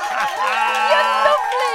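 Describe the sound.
A control room crew cheers and whoops together in a loud, steady burst of overlapping voices, with high excited shouts sustained through the short moment.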